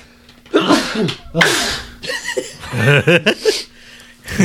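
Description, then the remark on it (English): Two loud sneezes burst out in quick succession, each a sharp explosive release, followed by a short chuckling, breathy laugh. “Bless you. Twice, yeah.”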